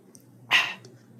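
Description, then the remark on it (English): A single quick sip of water, a short breathy slurp that rises suddenly and fades within a fraction of a second over a faint low hum. “Excuse me, I'm going to take some water.”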